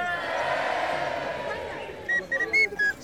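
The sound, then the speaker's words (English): A thin, feeble little whistle sounds in a few short, uneven toots near the end, following a stretch of murmuring crowd-like background noise. “That tiny little whistle. Pathetic.”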